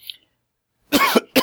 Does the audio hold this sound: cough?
yes